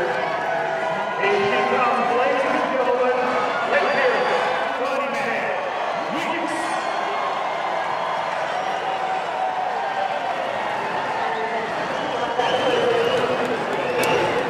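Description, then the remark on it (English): A large crowd at Royal Randwick racetrack on a sunny day cheers the mare Winx. It is a dense, steady roar of many overlapping voices that stays loud for the whole stretch, with occasional sharper shouts and claps poking through. “I've never seen it full like this, and I've never seen a crowd with adulation for one mare.”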